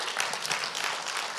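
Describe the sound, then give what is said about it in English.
A church audience at the Suffolk campus breaks into steady applause for over $50,000 of missions giving last year, a dense wash of many hands clapping at an even level throughout, with no individual claps standing out. “Come on, you can clap for that.”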